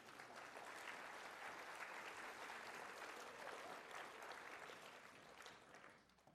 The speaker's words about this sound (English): So, you've probably never been asked to applaud for water before, but some water.